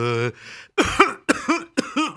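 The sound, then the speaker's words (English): A short vocal sound gives way to three loud, harsh coughs in quick succession, each a rough burst with a throaty, voiced edge. “I say, stop coughing so much.”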